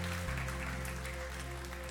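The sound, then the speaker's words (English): An audience at a church service applauds the worship team steadily, a dense wash of clapping, while sustained keyboard tones hum underneath throughout. “Can everyone give the worship team a huge round of applause this morning for their job?”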